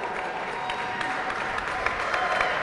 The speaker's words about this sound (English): Joe Tooney? Yeah. Offensive lineman, two-time Super Bowl champion. A round of applause, everybody, please.